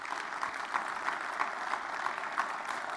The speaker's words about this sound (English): That's the most people we've had join since I've been here. And it's the largest contribution we've had since I've been here. And that's just those are things to celebrate, friends. And yeah, you can give a round of applause for that.